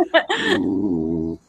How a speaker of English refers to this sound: My dog hates cats, and she's currently trying to attack one.